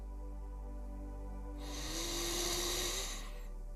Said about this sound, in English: Follow my breathing pattern now. Take a deep breath in.